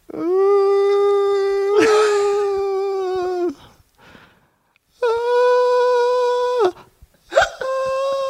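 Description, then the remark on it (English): A human voice imitates a muffled, puppy-like whimper made during sleep, as if trapped and unable to scream: three long, strained, high-pitched whining tones, each held steady for a second or more with short breathy gaps between, fairly loud and with no other talking. “Like this like almost like I was trapped and I couldn't scream properly. Like you were a puppy in a box.”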